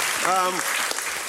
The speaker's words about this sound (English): Well, another clap for Julia. That is your second clap.